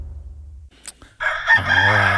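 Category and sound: bird, rooster crowing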